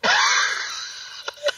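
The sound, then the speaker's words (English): A little boy's rattling chest cough in an office: a long, hoarse, wheezing rasp that fades, then two short, sharp coughs. No one speaks. “Well, he's coughing tremendously. What's that cough from, little boy? Why are you coughing so much, little boy?”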